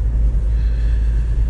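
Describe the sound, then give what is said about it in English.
A truck engine rumbles steadily, a deep, continuous low drone with no voices over it as the truck pulls into a spot. “Oh, my truck. Oh, yes. Southern Soul. Southern Soul is pulling into the spot, people.”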